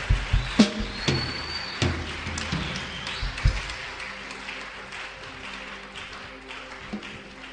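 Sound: hand clapping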